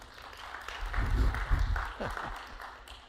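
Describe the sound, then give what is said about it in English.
An audience answers with one clap, a short burst of clapping that swells and fades within a couple of seconds, mixed with murmuring voices and a low rumble underneath. “One clap.”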